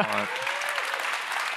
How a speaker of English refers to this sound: Wow. You can clap for that.